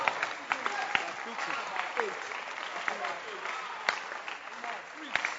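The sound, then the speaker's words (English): An audience claps hands in a dense, sustained burst of applause, many overlapping claps forming a steady crackling wash with a few sharper individual claps and voices murmuring underneath. “can you clap your hands for first love?”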